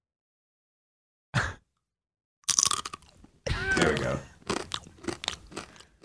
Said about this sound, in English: you didn't give us the crunch, the savory ASMR crunch